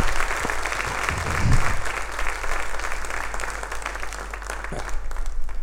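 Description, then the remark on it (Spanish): Steady audience applause as the audience applauds themselves, a dense wash of many hands clapping that holds at an even level for several seconds, with a brief low swell near the start and no speech. “Pues dense un aplauso, gracias a ustedes por...”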